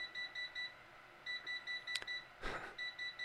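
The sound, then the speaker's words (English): A kitchen timer beeps in quick bursts of four high, electronic tones, the pattern repeating steadily, with a short clatter and a rustling noise breaking in partway through. The timer signals that chicken is done cooking. “Chicken's done.”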